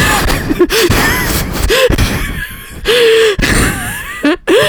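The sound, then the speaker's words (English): Someone mimics loud, exaggerated gasping inhales right up against the microphone, several sharp breathy pulls in quick succession with rising vocal squeaks, harsh. “But there's a difference between a heavy breather and, like, actually just, like, suck it off the mic.”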